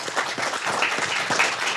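A crowd breaks into applause, a dense, steady wash of many hands clapping at once, lively and fairly loud throughout with no voices standing out.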